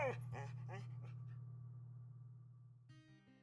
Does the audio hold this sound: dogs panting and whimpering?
yes